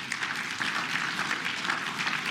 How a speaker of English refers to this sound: And over 140 of you volunteered your time, and a number of you are doing that multiple times here through the weekend. I think that's pretty cool. I'm excited about that. And that, yeah, you can applaud that.